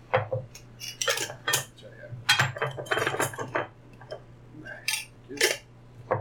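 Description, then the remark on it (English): Glass jars being opened and shut next to a microphone, with repeated bright clinks and clattering taps in an irregular rhythm, fairly loud, over a steady low hum with no talking. “I like the sound of jars just opening and shutting. Clink, clink, clink, clink.”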